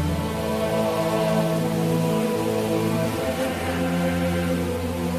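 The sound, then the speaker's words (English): Steady, heavy torrential rain on the winter road to Jerusalem hisses continuously over a sustained, droning musical tone, a constant downpour that never lets up and holds an even loudness throughout. “Despite weeks of torrential rain, the devoted crusaders struggled on.”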